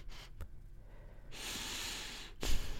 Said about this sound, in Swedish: Hur låter det någon andas genom näsan bara? Nej, men det låter vanligt, men man hör ju ingenting.